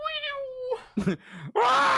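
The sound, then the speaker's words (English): A voice imitates the screaming engine of a Star Wars TIE fighter: a wavering whine, a few rough bursts, then a loud, sustained, harsh screech that fills the final half second. “Do you think the TIE fighters' engines naturally sounded like that, or somebody was like, "Yeah, but make it scream"?”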